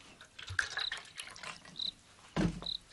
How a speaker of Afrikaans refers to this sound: Kan ek maar een bykie water kry, asjeblief, Toekie? Nou maar goed. Skinkie so bykie.